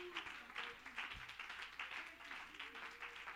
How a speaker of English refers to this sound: Go clap your hands and give God some praise right now.